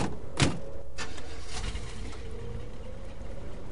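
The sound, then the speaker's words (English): A glass privacy partition in a limousine slides up with a steady, low electric motor hum, beginning with a couple of sharp clunks and running on evenly without talk. “When did you have this glass put in? I put it in so we could speak freely on those occasions when we happened to use the limousine.”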